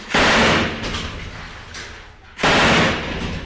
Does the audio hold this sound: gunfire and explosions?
yes